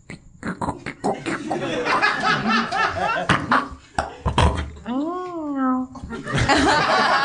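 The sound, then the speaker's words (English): Someone vocally imitates a lock being picked: a busy run of clicky, chattering mouth noises, then a wavering sung tone, with other people chuckling throughout. “What's him picking the lock sound like?”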